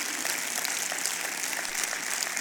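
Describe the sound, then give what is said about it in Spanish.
An audience breaks into steady applause to God, many hands clapping together in a dense, sustained patter that holds at an even level throughout, with no one speaking over it. “Eso es algo hermoso, un aplauso a Dios por ello que se lo merece, amén.”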